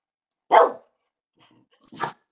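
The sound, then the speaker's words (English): Two sharp barks from a dog named Bouncy, asked by its owner to bark; separated by a pause of over a second, the first is loud and full, the second slightly softer and shorter, with no talking in between. “Bark once if they're going to win the Super Bowl.”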